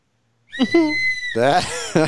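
A help whistle blows in two wavering, hooting bursts: a steady high tone first, then a louder, rougher blast that ends with a short final toot.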